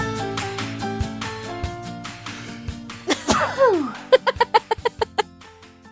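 A man lets out one sharp, loud sneeze over a steady background music bed, then quick, rhythmic bursts like chuckling follow.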